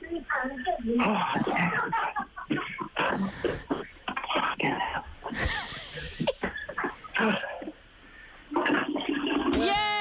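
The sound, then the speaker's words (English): A toilet is flushed again with a rushing gurgle of water midway through, while excited voices chatter and react loudly around it. “And the last one, you need to flush the toilet again.”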